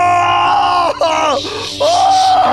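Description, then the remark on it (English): A person vocally imitates a loud, drawn-out scream of pain as a knife comes down, with the cry breaking briefly before rising again in strained, wavering bursts. “And the knife comes down. It goes, ah!”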